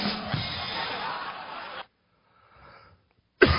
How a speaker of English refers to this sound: Excuse me. I think I have the whooping cough. I know you're saying, I don't even think whooping cough exists anymore. I think it does.